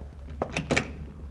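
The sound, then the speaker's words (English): A door opens with a quick cluster of three clicks and knocks from the latch and handle over about half a second, then falls quiet. No one speaks. “Close the door.”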